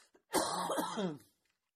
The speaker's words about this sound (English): Sorry, I still have that Guatemalan cough that I haven't quite gotten rid of.